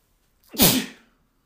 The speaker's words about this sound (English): I'm going to sneeze.